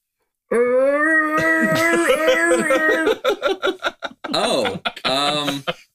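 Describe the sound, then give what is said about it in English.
A voice imitates the scream of the Tusken Raiders, the sand people, a nomadic desert tribe: a loud, sustained, wavering high-pitched cry that breaks into rapid, choppy yelps and ends in a final warbling howl. “They just scream.”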